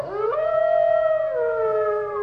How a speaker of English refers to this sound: Hy het so irriterende toonhoogte, daai wolf.